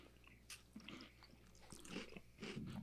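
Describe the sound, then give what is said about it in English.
Someone bites into a very light, crumbly cookie and chews it, producing soft irregular crunches and mouth sounds, fairly quiet, with no talking. “It departs into dust once you bite into it.”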